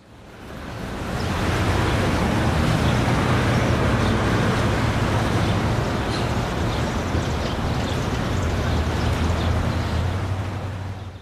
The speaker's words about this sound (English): First time in Washington, D.C. I can't believe all this freaking traffic.